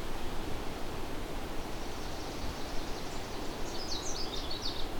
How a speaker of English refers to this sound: Here's a fairly common warbler known as the American Redstart.